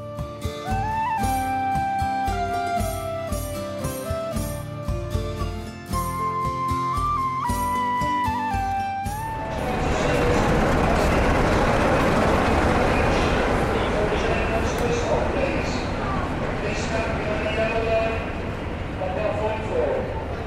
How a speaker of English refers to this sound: That's one load of passengers on their way to Cardiff Central. So there goes the train, light enough to take the route that we should have been taking today. Very sad.